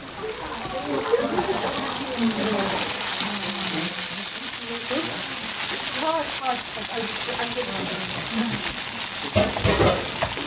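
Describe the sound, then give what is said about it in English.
Kidney beans cook in a lot of water for rajma with a steady bubbling and hissing sizzle that runs throughout, while a person talks over the constant simmering noise. “Okay, so this is going to have a lot of water, but we just want to cook.”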